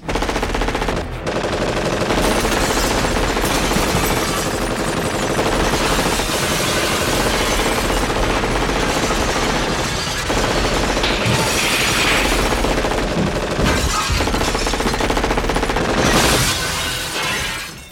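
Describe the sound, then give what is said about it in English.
Sustained, loud bursts of rapid gunfire fired at glass rattle almost continuously, mixed with crashing and shattering glass, with brief pauses between volleys and no voices. “Well, at last, let's shoot this fucking glass.”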